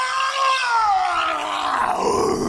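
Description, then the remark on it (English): A person lets out a loud, sustained growling roar, the strained voice sliding downward in pitch over a couple of seconds, with no other talk. “That's more of a growl than a... Yeah, that was like a roar.”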